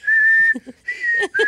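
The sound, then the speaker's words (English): A shrill toy whistle, blown by a boy and heard in the background over a phone call, sounds in long, steady, high-pitched blasts, one sustained note followed by two shorter ones, with brief low murmurs in the gaps between them. “You can just hear the whistle in the background go.”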